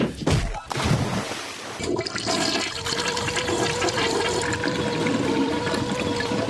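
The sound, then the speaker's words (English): A toilet with blue water flushes while a person's head is dunked in it, loud rushing and gurgling water that swells after a brief scuffle of noise and keeps churning steadily to the end. “both you two, you're in the loo, and the water is blue.”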